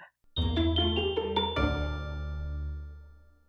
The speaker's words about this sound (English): And it exposed the fairy in our midst, who cannot help but respond to the sound of the bells. My cat Deacon, whenever I play an episode beginning out loud, he comes running to the sound of the fairy bells. Without fail.